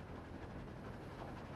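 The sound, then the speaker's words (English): Train wheels click-clacking on the tracks of a moving passenger train as it travels past fields and flower gardens, under a steady, low rumble of the rail car, continuous and fairly quiet, with no voices. “Elmo likes hearing the train wheels click-clacking on the tracks.”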